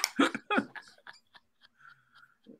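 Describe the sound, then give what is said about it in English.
A man blows his nose: two loud, wet honking blasts, then a series of softer snuffling puffs and a faint nasal whistle trailing off. “Back to blow his nose.”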